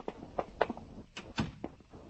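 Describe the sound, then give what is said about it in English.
A door being closed: a short series of knocks, clicks and soft thuds spread over about two seconds, with no voices. “You close the door. Close it yourself.”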